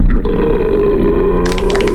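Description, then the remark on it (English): A single long, loud human belch by a New Englander rumbles steadily for about two seconds, deep and gravelly, with a rougher, brighter rasp near the end. No talking. “Just for the record, all of those belches were made by authentic New Englanders.”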